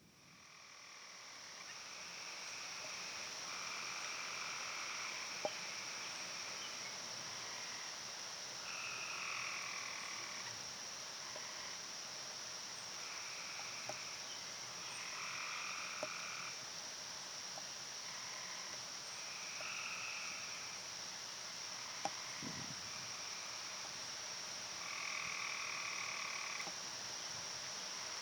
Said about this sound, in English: Yeah, so that sounds like, I think that sounds like Cope's Gray Tree Frog. Ding, ding, ding, ding, ding, and yes. Wow. Nice, man. I think so. So this one's actually one of the harder ones to find at the park, at least it was for me.